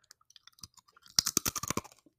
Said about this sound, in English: I'm going to take a bite of this pretzel chip because I need to. We would love to hear you chew. Hold on. I'll get the good crunch right now.